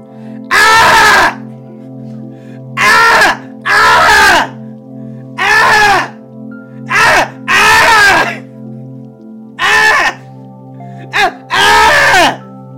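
Several seagulls fighting over a sardine squawk loudly in about nine harsh, wailing bursts at an uneven pace, calls sometimes overlapping, over a faint steady low hum with no talking.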